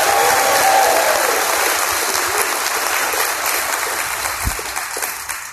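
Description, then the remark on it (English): An audience applauds its youth with sustained, dense hand clapping of praise, loud at first and gradually thinning out, with no speech over it. “Let's give our youth a big hand clap of praise.”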